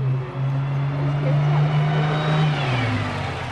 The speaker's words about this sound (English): That's a sound bus riders in Los Angeles say they're sick of hearing. A bus so crowded it can't or won't stop, leaving them stranded.